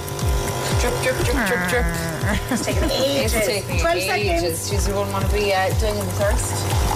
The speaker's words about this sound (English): Drip. It's taking ages. 12 seconds. She doesn't want to be doing it thirst. Come on, Nespresso. Seconds. Hey, we're done.